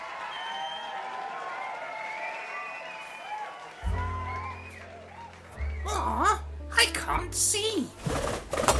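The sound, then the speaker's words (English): A drinking glass is knocked over in a club, spilling a drink, with a few sharp clattering knocks and a brief splash, heard over a noisy, chattering crowd with low humming tones and warbling sounds in the background. “Who put that glass there?”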